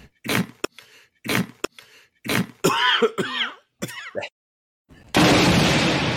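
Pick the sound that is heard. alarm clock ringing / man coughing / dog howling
man coughing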